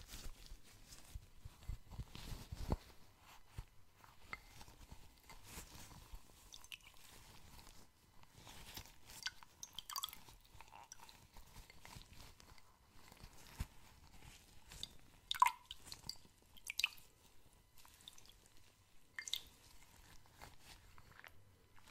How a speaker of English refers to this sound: Really need to soak it up, the product, the water needs to really get deep into your skin, and we can only achieve that by really soaking the cloth deeply.